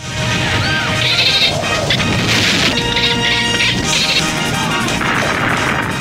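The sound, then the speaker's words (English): The gopher chattering sound effect from the 1980 film Caddyshack, the same sound as the dolphin on the TV show Flipper: loud, continuous squeaky whistles and chirps with rattling clicks, rising and falling in pitch throughout, with no voices. “the sound of the gopher is the same sound as the body on the album? No. As the same as the dolphin on the TV show Flipper.”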